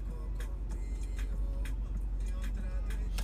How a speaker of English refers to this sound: This car coming down the wrong way.